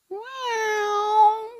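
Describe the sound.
A person's voice imitates a cat's meow, a sound made backwards and then reversed, in one drawn-out, steady, tonal cry lasting over a second, clear with no other sounds around it.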